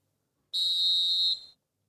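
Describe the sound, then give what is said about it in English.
One sharp, shrill blast of a referee's whistle, the third whistle heard, held steady for about a second before cutting off, loud with no voices or other sounds around it. “That's the third whistle”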